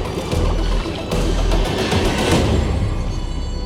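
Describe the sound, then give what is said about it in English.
Ice being dumped into a bathtub full of steaming water: a loud, steady rush of sloshing and splashing, with a few brief clunks breaking through, and no voices. “Betty's dumping ice in the water, and the water's putting off steam, and literally the water is boiling in the tub.”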